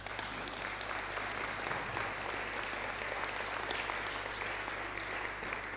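Steady, dense applause from a crowd for a speaker who presented that morning, a continuous wash of many hands clapping at an even level for several seconds with no voices standing out.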